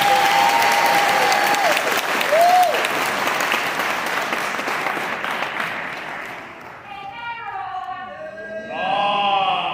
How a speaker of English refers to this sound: Clap it up for him one more time.